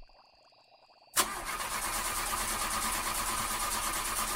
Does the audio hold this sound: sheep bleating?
no